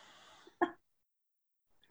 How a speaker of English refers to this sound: Excuse me. All right. Sorry. Now it's like you cough or clear your throat in public and everyone's freaking out.